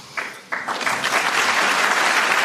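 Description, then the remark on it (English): A crowd applauds during a speech by the President of the United States, starting with a few scattered claps and quickly swelling into steady, dense clapping that continues loudly to the end. “And imagine having to get a round of applause for a basic tenet that is crucial to American liberty.”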